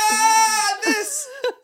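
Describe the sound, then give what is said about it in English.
A person lets out a drawn-out, wavering vocal bleat, like a lamb or cow, followed by a couple of shorter quavering cries. “You like sound like a baring cow in my ear or a lamb even.”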